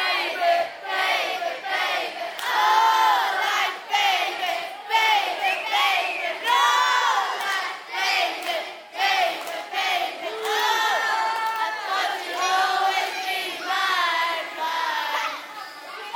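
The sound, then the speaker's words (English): After a one-two-three-four count, a large crowd shouts a chorus of "baby" together, many voices overlapping in loud, sustained, ragged yelling that rises and dips for about sixteen seconds without pause. “And I want a chorus of baby, okay?”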